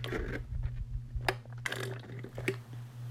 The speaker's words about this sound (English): Let me sip water. Not water, fruit punch.